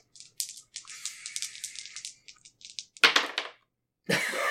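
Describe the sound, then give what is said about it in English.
2d6 chaos dice rattle and clatter in a quick burst of small, sharp clicks for a few seconds, rolled to check whether a player is noticed and landing on a six, followed by two louder, rougher scraping bursts. No one speaks. “So we're gonna say that there is a 2d6 chaos dice chance of getting noticed.”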